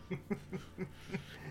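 A quick run of about five short, rhythmic hacking coughs from a nearby voice, each burst rough and throaty, fairly quiet, with no talking around them.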